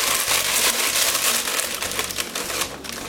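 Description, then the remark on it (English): Steady crinkling and rustling of stiff parchment paper being pressed and shifted into a bowl for a round loaf of bread dough, for about three seconds, dense and crackly with no voices. “Okay, nice round loaf, parchment paper in a bowl.”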